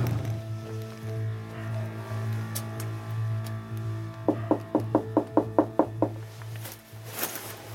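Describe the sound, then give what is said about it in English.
A quick, even run of about nine sharp knocks by a CBS News crew on the front door of a lakeside house in the Heron Point subdivision, Virginia, heard over a steady low rumbling hum, with no one speaking. “We're gonna go to his front door, give it a knock, and see if he'll answer a couple of questions.”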